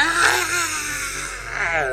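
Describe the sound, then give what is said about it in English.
A voice imitating the scream of a man falling off a roof in a movie: a sustained, strained wail with a wavering high pitch, loud and continuous for about two seconds, rising again near the end. “Can you give us a scream”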